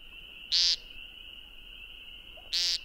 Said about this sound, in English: That was the classic nasal peent of the American woodcock. Check nearby fields, especially boggy ones or ones adjacent to wet woods and waterways, at dawn and dusk.